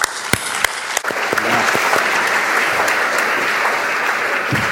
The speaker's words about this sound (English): Please join me in giving them a warm hand of applause.